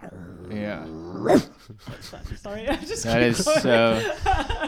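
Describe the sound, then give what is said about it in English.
A person imitates a dog with vocal growls and barks, starting low and rough, then shifting to higher, yappier bark sounds in a rapid, uneven series, fairly loud. “I started a little deep and then I got into a higher pitched dog.”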